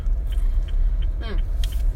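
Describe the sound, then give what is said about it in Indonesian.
Close, soft chewing with a few crunchy bites scattered irregularly over a steady low rumble, like eating inside a moving car. “Kita ngunyah.”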